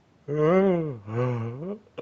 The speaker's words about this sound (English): That's a yawn.